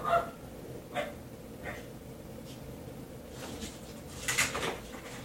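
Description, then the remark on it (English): A small female dog gives a handful of sharp, irregular barks and yips over a few seconds, fairly faint, as if alerting to something, with a steady low background hum and no talking. “She's acting like our other dog, our big dog. The big dog barks at everything.”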